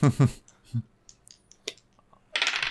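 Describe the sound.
Dice rattle and clatter across a table, landing on a one and a three: a few scattered light clicks, then a louder, dense tumbling rattle at the end. A voice briefly talks at the start.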